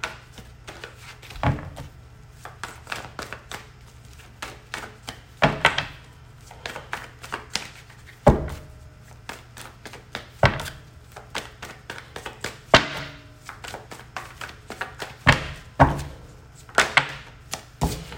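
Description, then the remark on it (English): A deck of tarot cards being shuffled during a tarot reading: irregular bursts of sharp taps and soft slaps as the cards knock together and against a surface, over a steady low hum, with no talking. “Let's do another good shuffle.”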